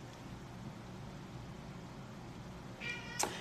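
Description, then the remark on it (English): A single meow from a pet cat rises near the end over a steady low background hum, short, with no talking. “My cat's even mad at me.”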